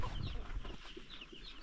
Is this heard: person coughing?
no